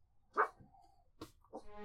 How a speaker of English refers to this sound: She's accosting a little dog. Oh, no, that dog sounds cool with it.